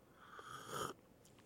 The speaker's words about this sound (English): I need to take a drink of some mediocre coffee. Stand by 1 second, listeners, as I take a sip of some hot Folgers. Just a second.